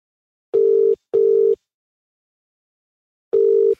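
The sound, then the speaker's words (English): A phone ringback tone purrs in two quick steady bursts, pauses for nearly two seconds, then starts again, clear with no voices, as a call is placed from a personal phone to a man who may not answer. “Okay, I think because they're calling from a private number, maybe that's why he's not answering, so let me call him on my phone.”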